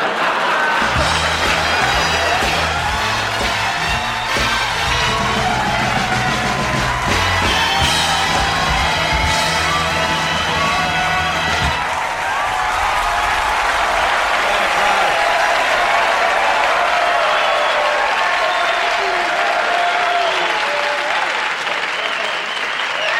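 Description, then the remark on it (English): A crowd applauds steadily and loudly for over twenty seconds, with cheers and whoops mixed in; a low musical band tune plays underneath for the first half before the clapping carries on alone. “Listen to that. Jeez, that's really nice. It's a great crowd here.”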